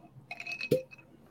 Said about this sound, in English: I got to try the old 9 grain. So I'm going to pop her open, and this is what I'm going to sip on tonight.